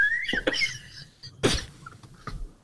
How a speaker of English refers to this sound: Hey, let's hear that harmonica again. All right. Quick show of hands. Who thinks that sounds like a sick dog?